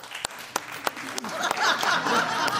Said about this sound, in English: Like, in this room, be honest, clap if you never got hit as a kid. Let me hear you. You never got hit.